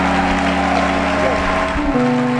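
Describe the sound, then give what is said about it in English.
An audience claps steadily in a loud, continuous wash of applause as a speaker is invited up to share a testimony, with sustained musical tones humming underneath throughout. “Are you clapping or you're not clapping?”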